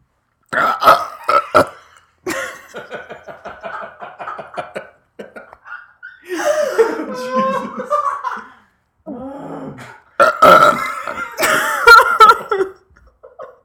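A series of loud burps, some long and croaking, others short and choppy, broken by brief pauses, with a bit of laughter mixed in.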